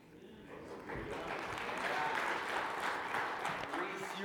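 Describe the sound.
An audience breaks into applause, a dense, steady patter of many hands clapping that swells in after a quiet start and holds at a fairly loud level, with faint voices mixed in.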